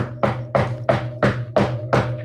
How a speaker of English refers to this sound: Yeah. I don't know if you could hear that. But that was me knocking on wood. He's knocking on wood. Very hard and very, very loudly.